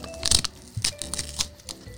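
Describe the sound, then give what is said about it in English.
Crisp plastic crackling and crinkling in several bursts as a plastic sushi container holding tuna and imitation crab is cracked open, with a short tearing sound as its sticker is torn; no voices. “Crack it open.”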